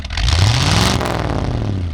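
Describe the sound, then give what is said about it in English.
A hybrid Volvo car accelerates while being driven, its engine note rising steadily as low tones climb in pitch. Road and wind noise fill the background for the full two seconds, fairly loud. “I actually forced Mark to record himself driving the car, and we are going to cut to that right now.”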